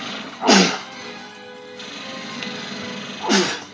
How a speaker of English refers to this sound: I tell y'all, this is, my fucking sinuses are a little worse. And I hate that I'm sitting here sneezing on a commentary I'm trying to do for y'all.